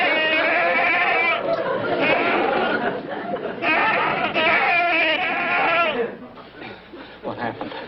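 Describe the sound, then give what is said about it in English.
A goat bleats loudly and repeatedly, long quavering cries running almost continuously for about six seconds before fading to quieter background noise. “That goat's a dangerous weapon.”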